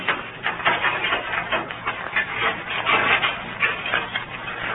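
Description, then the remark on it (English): A heavy wooden palace gate slowly opens after a knock, giving a continuous, rasping, grinding scrape with uneven pulses of creaking friction, moderately loud and steady throughout, with no voices. “He waited breathlessly as the gate slowly opened.”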